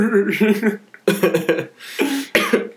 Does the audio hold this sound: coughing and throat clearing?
yes